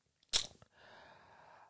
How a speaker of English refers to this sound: Excuse me there while I yawn, as I'm very tired.